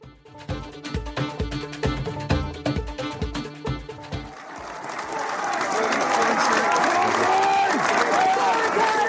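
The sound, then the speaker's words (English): At a football match, a large stadium crowd claps in rhythmic bursts at first, then breaks into a steady, loud roar of applause and cheering that swells and holds to the end, following a presentation on the pitch. “the crowd are in good form, and just had a nice presentation on the pitch there”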